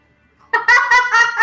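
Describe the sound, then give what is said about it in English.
A bird calls loudly, a quick run of about four harsh, warbling pulses after a moment of quiet, with no talking over it. “I kind of look over at the bird.”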